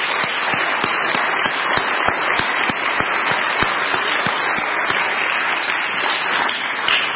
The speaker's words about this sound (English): Let's give a round of applause and express appreciation for our small group leaders here.